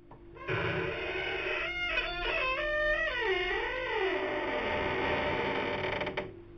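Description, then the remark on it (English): A long, loud creak of a newsroom door that needs fixing, lasting several seconds, its squealing pitch wavering and sliding up and down as the door swings open, with no voices. “Let me walk over here to the door. I really do have to fix this door.”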